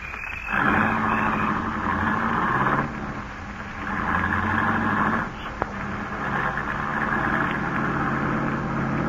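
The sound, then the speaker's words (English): A new car's engine drones steadily, surging louder as it labors, easing back, then pulling hard again as the car climbs a steep grade with sharp turns. “Quit worrying. The new car handles great.”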